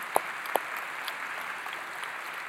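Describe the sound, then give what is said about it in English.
A church audience applauds the news that the church gave $330,000 to missions: a soft, steady patter of many hands clapping, with a couple of sharper individual claps standing out early on. No one speaks. “That, you can clap.”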